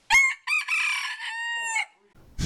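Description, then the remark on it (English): A rooster crows once, loud: a sharp opening note, a brief break, then a long drawn-out wavering call that tapers off, followed by a short burst of noise; the chickens here roam freely through the streets. “Yes, you just heard a chicken.”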